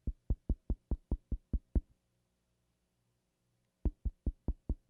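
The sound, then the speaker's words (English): A quick, evenly paced run of sharp knocks on a door, about eight in a row, then a short silence before another steady burst of knocking. The knocks are distinct, with no voices. “Stands at the door of your heart and knocks.”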